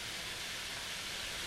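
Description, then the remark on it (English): Rainwater in Montreal rushes over streets and parking lots in a steady, unbroken hiss, a fairly soft, even wash of noise that never changes, with no voices and no separate splashes or drips standing out. “When it rains in Montreal, water rushes over hard surfaces like streets and parking lots.”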